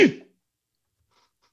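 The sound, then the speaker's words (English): A single sharp sneeze bursts out, loud and abrupt, then fades quickly into near silence with only a faint trace of noise afterward. “Bless you.”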